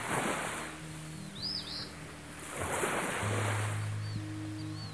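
Ocean waves surge and wash onto the shore in two broad swells in Gangalida country, Doomadgee, Queensland, Australia, with a few short bird calls above and a low steady hum underneath.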